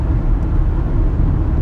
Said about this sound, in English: Damn, girl, you driving a car? What is that, a Focus, girl? Damn, girl, was that Focus?